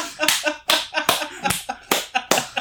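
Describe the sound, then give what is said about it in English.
Slow, sparse, passive-aggressive hand clapping in a video Chili's published to celebrate its own birthday: about five sharp, bright claps spaced roughly half a second apart, each with a quick decay, sounding unenthusiastic and deliberate. “They're just like, some of them, they're just like passive aggressively clapping.”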